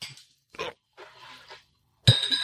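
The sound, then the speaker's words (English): A few soft clattering bursts, then an ice cube drops into a glass of milky-white drink being prepared, with a bright, ringing clink near the end. “Okay, and then an ice cube.”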